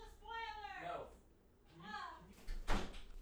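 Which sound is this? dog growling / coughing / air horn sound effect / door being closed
door being closed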